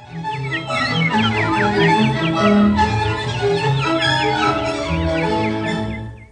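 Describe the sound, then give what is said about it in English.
Quick, high bird chirps and trills from the film Bambi repeat in lively bursts throughout, over a steady bed of orchestral music with sustained lower notes. “Those are birds.”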